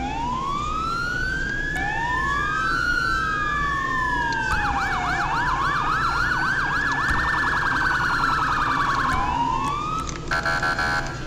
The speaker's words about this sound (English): That's give you guys a siren demo. For those that are new, I did change my sirens. So, here.